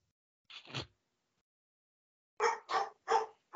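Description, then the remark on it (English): A dog gives a single bark, falls silent for a moment, then lets out three quick, evenly spaced barks. The barking is loud, with no voices. “See, there, like the dog didn't know that.”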